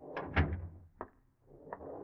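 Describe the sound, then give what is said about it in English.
A back door opens with a heavy wooden clunk, followed by a couple of lighter latch clicks as it swings shut, fairly loud, with no voices. “Get up your nerve as you slip in the back door and sneak up the stairs.”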